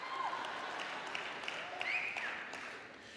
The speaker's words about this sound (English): I need you to clap.